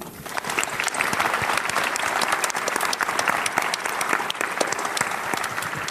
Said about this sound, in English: We often do this on the podcast, because we don't usually have an audience. But I think both gentlemen deserve a round of applause.